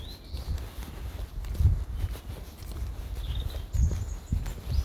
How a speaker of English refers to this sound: But birds are in full song, which is good.